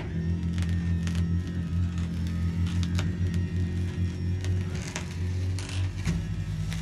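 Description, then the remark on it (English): A motorized awning extends with a steady, loud electric motor drone, a low humming whine that runs throughout, broken by scattered faint clicks and rattles. “Well, it's moving the awning now.”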